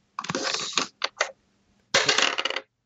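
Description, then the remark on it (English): A die rolled on a table clatters and rattles across the hard surface in a few quick bursts, a pause, then one more longer rolling rattle, landing on a three. Fairly loud, with no voices. “Where'd it go? We can't see it. It's a three.”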